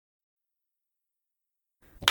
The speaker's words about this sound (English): It was a perfect clap. Yeah. It was real good.